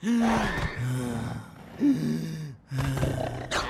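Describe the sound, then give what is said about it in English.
Loud, strained gasping breaths repeat in a rough, heaving rhythm, each inhale and exhale harsh, with brief pauses between. No one speaks; a voice imitates the trouble breathing that is a symptom of coronavirus. “Third, trouble breathing. It might even sound like this.”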